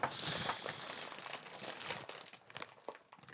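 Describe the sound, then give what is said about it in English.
Crinkling of a plastic snack bag, a dense run of crackly, rustling bursts with sharper spikes near the end, fairly quiet overall and steady without any talking. “Well, that bag looked like it was sealed up good.”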